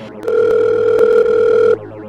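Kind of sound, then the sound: signal or alarm, telephone ringing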